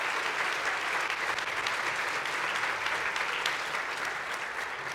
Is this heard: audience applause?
yes